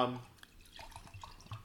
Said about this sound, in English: That's me. That's me pouring some gin and tonic.